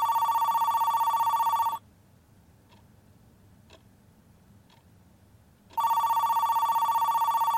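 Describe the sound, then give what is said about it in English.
A telephone rings loudly in two long bursts separated by a pause of a few seconds, with faint ticking audible in the quiet gap between rings. “Just sit around waiting for the phone to ring?”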